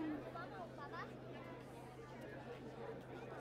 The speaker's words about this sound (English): We're excited. Everyone's excited. Look at the thronging crowd.